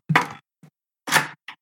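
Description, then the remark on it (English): A knock at the door: a few sharp raps in an uneven pattern, two louder thuds each followed by a softer tap, clear with no one talking. “And oh, I have a knock at the door.”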